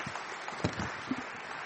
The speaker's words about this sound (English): Well, it's very good to have given us the inside track on what it really is to be a shepherd. So thank you so much for being with us. And maybe a round of applause for our shepherds.